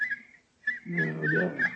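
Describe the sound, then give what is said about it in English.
A person whistles for help in Sussex at night, imitating a nightingale's song: high, warbling phrases that break off briefly, then resume with quick trills over a low, buzzing undertone. “My whistle is that of a nightingale, a song unheard in Sussex at this time of the year.”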